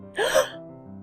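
A single sharp, breathy gasp, close and fairly loud, voiced by a person acting out a startled intake of breath, followed by quiet room tone.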